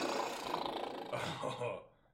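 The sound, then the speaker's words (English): A toilet flushes with a loud, steady rush of gushing water lasting about two seconds before tapering off into silence. “Flush.”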